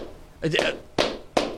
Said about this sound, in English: That's the cheer. That's the she was doing the cheerleader claps where it's like their cup. Tight hands.